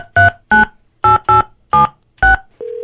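Six quick electronic telephone keypad tones beep in an uneven rhythm as someone dials to call a contest winner, each a short two-pitch chirp, followed by a steady low ringing tone starting at the end. No voices are present.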